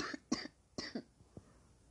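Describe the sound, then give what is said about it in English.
Two harsh coughs in quick succession, each a sharp burst trailing off, followed by a few softer throaty sounds; no talking. “Kind of sound like I was gonna cry, but I was just gonna cough.”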